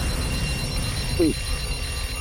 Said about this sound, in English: Oh, your phone's cracking up there.